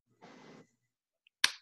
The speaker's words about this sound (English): Golf clap.